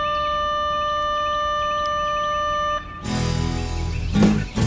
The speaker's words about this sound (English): The grounds at Buford Middle School are eerily quiet for a Tuesday. Students, including my 8th grade daughter, won't be coming back here for the rest of the school year, but the bell still rings.